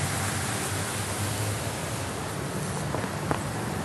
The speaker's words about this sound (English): It's raining a little bit less now.